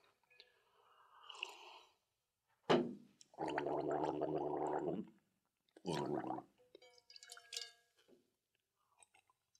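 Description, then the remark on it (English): Loud gargling of salt water from a gargle bucket rattles in the throat for a second or two, framed by short wet mouth noises, sputters and breathy sounds before and after; no clear words are spoken. “Does that gargle bucket have sentimental value for you?”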